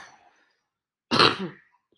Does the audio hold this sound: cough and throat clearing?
yes